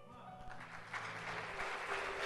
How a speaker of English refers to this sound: Now clap your hands for the church.